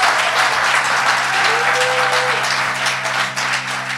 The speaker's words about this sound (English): please give a huge round of applause for Itasha Cave